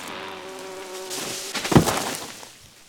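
Furious bees defending their honeycomb in a tree, stinging a bear: a steady, droning buzz hums for about a second and a half, then thickens into a louder, agitated swarm with a sharp impact in the middle before fading out.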